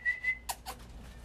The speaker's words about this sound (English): Damn, yeah, dog, shut up.